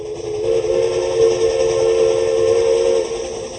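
A train whistle blows one long, steady, mournful note lasting about three seconds, loud over a low rumble of background noise, then fades out. No one speaks.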